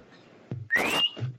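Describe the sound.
A single short, sharp whistle sliding upward in pitch, loud, whistled by a man in a bar toward its corner, cutting through a burst of rough background noise, as if calling someone over.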